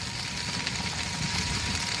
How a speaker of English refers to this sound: That's my wheelchair in the background as I train for our 200-kilometer Portugal North Coast to Western Spain hike that's coming up soon.